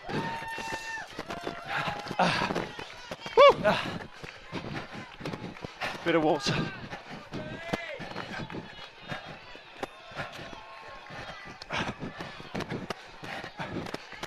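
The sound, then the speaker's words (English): Steady, rhythmic running footsteps patter along a track under scattered voices and a brief excited shout, with occasional louder thumps and bursts of background noise. “Six laps of the track, we'll be home, it's brilliant.”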